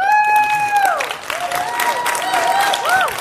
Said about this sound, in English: By applause, we're going to say who did better, okay? This team?